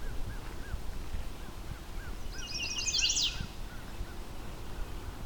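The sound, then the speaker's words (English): A chestnut-sided warbler, high up in a tree in a disturbed area, sings one quick, bright phrase of rapid high notes that ends with an accent, over softer repeated chirps from another bird and a steady low outdoor rumble. “Chestnut-sided warblers, there's enough disturbed area here for them to enjoy.”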